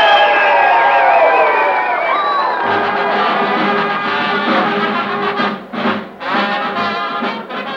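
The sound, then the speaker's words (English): A large crowd cheers and whoops loudly and continuously at a campus bonfire rally, individual shouts and yells rising over a dense roar of many voices. “A young man and an attractive girl stand on the outskirts of the crowd watching the festivities.”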